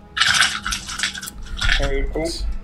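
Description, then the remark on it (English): Small hard dice clatter and rattle together in quick bursts, shaken and tumbled across a surface as they are rolled for a stealth check, fairly loud. A brief murmur of a voice comes near the end. “Yes, so go ahead and roll a quick stealth check for okay.”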